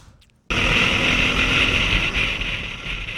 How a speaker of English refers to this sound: Nothing bad happens when ATVs drive on the road. A couple ATVs overtaking a few cars.